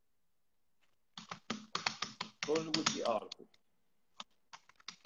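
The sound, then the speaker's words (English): Rapid keystrokes clatter on a desktop computer keyboard in quick, uneven bursts as someone types in "the history of atheism", pausing briefly while a man speaks a short phrase, then a few scattered key taps resume. “I typed it in.”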